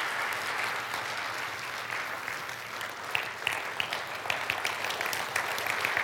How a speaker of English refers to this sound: And we tonight stand and applaud those silent servers amongst us. Let us do that and give God grace. And would you stand?